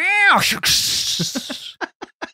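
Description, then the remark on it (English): Someone vocally imitates a stepped-on cat: a rising, bending yowl breaks into a long, harsh hissing screech, then trails off in a few short, sharp yelps, loud. “A cat gets stepped on.”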